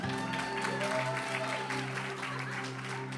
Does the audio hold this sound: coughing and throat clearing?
no